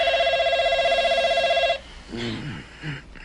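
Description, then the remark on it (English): A telephone rings loudly in a scene from the film City Slickers, at 5:16 a.m., one steady warbling trill lasting under two seconds that stops abruptly, followed by a person speaking briefly. “For example, this scene, in which his phone rings at exactly 5:16 a.m. on the morning of his 39th birthday.”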